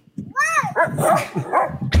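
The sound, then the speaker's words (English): A Rottweiler jumping on a trampoline lets out a quick run of excited, high-pitched barks and yelps, fairly loud, with a brief springy thump near the end. “How does it not get any better than a dog jump on a trampoline?”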